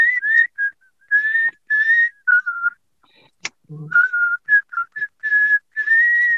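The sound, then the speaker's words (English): People whistle a bright, catchy tune together in short melodic phrases with brief pauses, clear, broken once by a quick low vocal sound midway. “So let me know when you're ready to whistle and we'll do it. It's just so catchy.”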